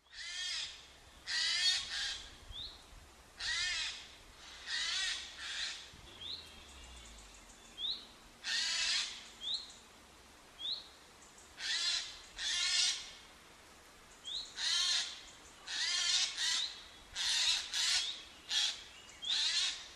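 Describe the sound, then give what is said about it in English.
Harsh, rasping screeches of a Eurasian jay, repeated about a dozen times in loud irregular bursts, with faint short chirps in the gaps and no voices. “When you catch sight of a jay flying away, the normal way to see this shy bird, the bird's white rump shows up like a light bulb among the trees.”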